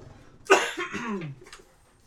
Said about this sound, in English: Cough away from the mic.